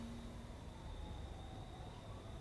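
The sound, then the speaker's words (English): Faint emergency vehicle sirens wail, a thin steady tone drifting over low background rumble, with no one speaking. “I hear sirens.”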